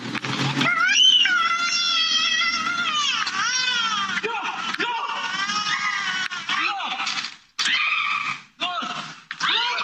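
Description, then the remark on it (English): A 2-year-old girl screams and wails almost nonstop as a coyote tries to drag her away in her family's front yard in Woodland Hills, California, filmed by a doorbell camera; loud, high, wavering cries rise and fall in pitch and break into short gasping bursts near the end. “A family's doorbell camera filmed a coyote trying to drag away their 2-year-old daughter in their front yard.”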